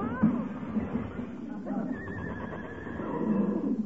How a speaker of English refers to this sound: What's that? Heavenly days, a runaway horse in this day and age. Hey, it must have busted loose from a delivery wagon.